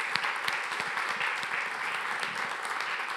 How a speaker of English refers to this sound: Freedom Works, let's give Bethesda a round of applause for being obedient to God's Spirit.